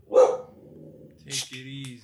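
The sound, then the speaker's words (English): A dog named Styles barks once sharply near the start, followed by a lower, softer growl-like vocalization and a second bark-like burst, all fairly loud. “My dog is barking.”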